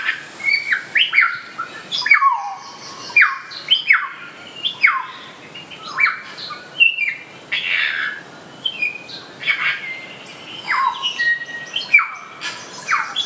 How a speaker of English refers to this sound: the kaka, which is the parrot you were just talking about, quite noisy, aren't they? They are.